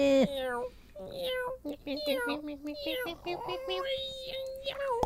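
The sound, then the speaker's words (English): A person imitates a cat's meow, making a string of drawn-out, nasal mews and short yowls one after another, fairly loud, with no other talk. “Cat meh.”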